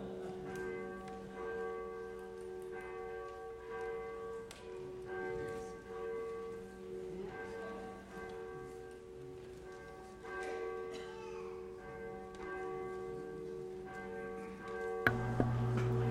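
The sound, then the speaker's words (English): A church bell at Trinity Lutheran Church in Freistatt, Missouri rings at the start of a worship service, steadily with sustained, overlapping tones that hum and decay, forming a continuous resonant wash, followed by a sharp louder strike near the end. “Wait for the bell.”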